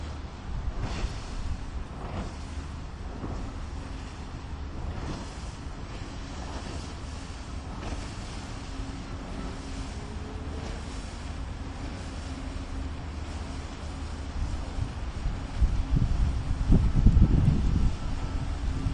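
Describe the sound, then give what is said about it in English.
A steady low engine rumble with a faint droning hum carries on throughout, swelling louder toward the end as a large bateau-mouche tourist sightseeing boat passes on the river near the Pont de Sully and Île Saint-Louis and turns around, with wind noise in the background. “This bateau mouche, the boat is called L'Espoir, hope. It's turning around now, just before reaching the Canal Saint-Martin entrance.”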